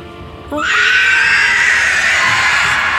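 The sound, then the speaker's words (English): A player in a tabletop role-playing game lets out a loud, piercing, sustained scream imitating a monstrous creature. It starts abruptly after a brief quiet moment and holds steady for a couple of seconds. “He's gonna try out his scream.”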